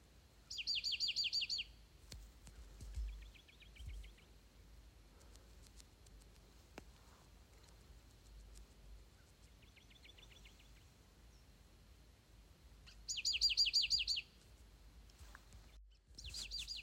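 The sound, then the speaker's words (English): Two birds of the same species trade identical trilling calls back and forth, one to the left and one to the right, one louder and the other softer, with quiet pauses between phrases and faint outdoor background. “Okay, so we have these two birds, the exact same bird. They're talking to each other right yeah.”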